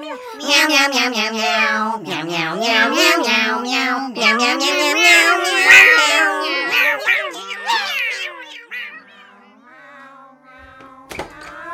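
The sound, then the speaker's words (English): A loud run of cat meows from the YouTube Cat Enders Christmas Special, one after another for about eight seconds, with several cats overlapping, then a few quieter, scattered meows and a brief thump near the end. “Yuletide is complete without an extra large helping of misery from the YouTube sensation that's even more dismal than its BBC One original. It's the Cat Enders Christmas Special.”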